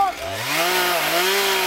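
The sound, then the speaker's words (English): A chainsaw used by firefighters to cut a fire line on a hill revs up loud, its buzzing whine climbing in pitch and then holding a steady, rough drone over a hiss of cutting noise. “Firefighters use bulldozers, shovels, chainsaws, whatever they can haul up the hill to cut that line.”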